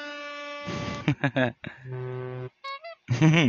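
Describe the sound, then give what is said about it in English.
A voice mimics a car horn, making a series of loud, buzzy honking blasts of uneven length with short gaps between them and no other sounds around. “That was my car horn sound.”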